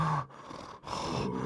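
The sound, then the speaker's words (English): A voice imitates an interviewee giving only deep, heavy breathing during a live interview: loud, raspy breaths in a steady rhythm, about three long breaths separated by brief pauses, with a growling, roar-like edge. “just like deep breathing, and you're like, hey, we're live”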